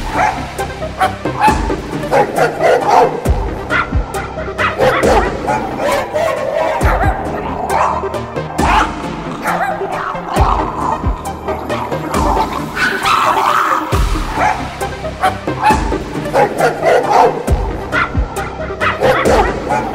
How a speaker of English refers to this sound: Five elderly chihuahuas. Wearing dresses. Freaking the fuck out.